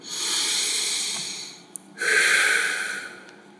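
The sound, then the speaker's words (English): One slow, deep breath drawn in with an airy hiss, a brief pause, then a longer, stronger exhale, taken during a guided prayer, with no talking. “And let's take a deep breath.”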